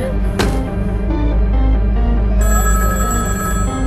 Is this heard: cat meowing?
no